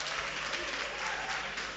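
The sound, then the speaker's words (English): A crowd at the 2023 Love FM High School Debate claps steadily for the hosts, Christian Service University College, in a dense, sustained burst of applause lasting under two seconds, even in loudness throughout with no voices rising above it. “Listen, gentlemen, please, a round of applause for our hosts, the Christian Service University College. Make some noise for them, please.”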